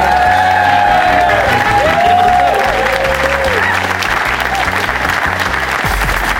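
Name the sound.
audience applause and cheering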